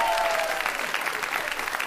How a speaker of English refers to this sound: And our panel, Angela Lavoie-Pierre, Rebecca De Unamuno, and especially big round of applause for Gene Kitson!